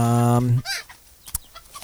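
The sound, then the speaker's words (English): Chickens cluck loudly: a long, harsh squawk gives way to a few quick clucks, then quieter scattered clucking and a sharp click. “Man goes to jail for driving drunk with a bunch of chickens.”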